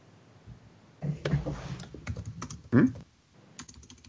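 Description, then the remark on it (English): Rapid typing by a man on a computer keyboard, a dense run of crisp key clicks with a few heavier thumps like the space bar, pausing briefly before resuming. No one speaks. “What's he doing? He's typing.”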